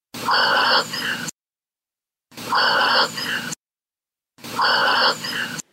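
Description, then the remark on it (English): A dog breathing heavily, three breathy, groan-like exhalations of about a second each, separated by short silences and sounding almost identical, fairly loud with no talking. “This is her dog breathing, and you can hear a very breathy, "I love you."”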